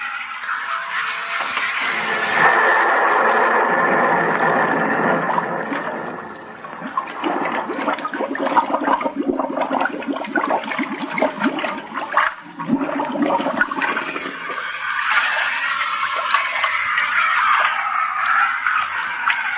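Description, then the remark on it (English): A helmeted diver, supplied by a pump, is lowered over the side into water, with loud rushing and splashing that churns steadily for about twenty seconds, briefly easing midway. No one speaks. “Okay, put me overside. Watch that pump.”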